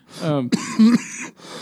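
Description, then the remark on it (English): A person clears their throat with a few short, rough bursts that blend into a voiced, coughing grunt, with no other sounds around it. “This coughing thing.”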